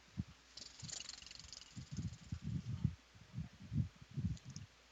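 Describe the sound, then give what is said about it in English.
A person purrs like a cat, a low rumbling purr in steady rhythmic pulses, with a soft breathy hiss near the start; no talking. “Now, just out of curiosity, real quick, can you guys hear the purring?”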